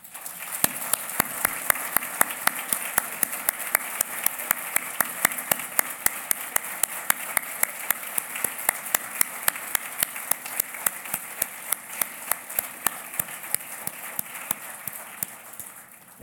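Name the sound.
audience round of applause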